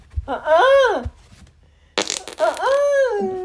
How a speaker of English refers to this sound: I got a fart. Well, go away from me.